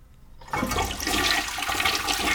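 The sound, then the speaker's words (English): A toilet flushes as someone flushes chemotherapy medicine away: a sudden loud rush of water starts after a brief quiet moment and keeps churning steadily to the end, with no one speaking. “What are you doing? Mom! Are you flushing your chemo?”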